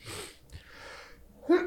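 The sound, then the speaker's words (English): A single sneeze, a sharp breathy burst of air with snuffly breathing around it, followed by a brief voiced sound at the end. “Bless you.”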